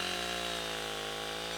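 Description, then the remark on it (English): A chainsaw whirs in a steady, continuous drone with a buzzing, harmonic-rich motor tone, holding the same pitch and loudness throughout with no voices. “But the second thing she heard was the whir of a chainsaw, and that was truly strange.”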